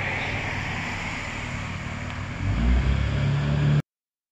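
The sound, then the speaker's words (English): Steady roadside traffic noise of cars and trucks passing by, recorded while out walking, a broad wash of vehicles with a low engine rumble that swells louder toward the end before cutting off abruptly. No one speaks. “Okay, so back in the office, indoors, so you won't hear those cars and trucks go by.”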